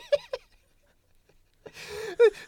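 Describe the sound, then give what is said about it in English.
A voice imitates the frantic panting of someone feverishly playing a video game: two quick huffs, a brief pause, then a longer stretch of loud, rushed, breathy gasping ending in a strained vocal exhale. “we panting and depraved.”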